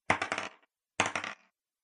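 Two separate bursts of dice clattering across a hard tabletop for an attack roll with disadvantage in a tabletop role-playing game, each a quick rattle of several bright clicks that tumbles and settles, with a short pause between the rolls.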